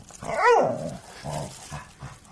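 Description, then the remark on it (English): A dog lets out a short, mournful howl that rises and falls in pitch, followed by a couple of softer, lower whining calls, with no talking. “That seemed like a bit of a howling pain there, Billy, so clearly you're not happy about it.”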